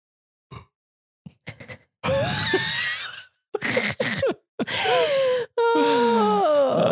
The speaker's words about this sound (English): I am yawning so much that I'm trying not to like look at you or acknowledge you're yawning so then I don't start yawning because I won't be able to stop.